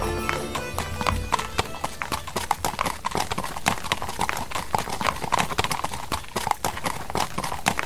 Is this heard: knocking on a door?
no